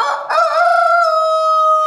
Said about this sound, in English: We have 115 roosters. Well, no wonder it's so noisy around here. It is very noisy.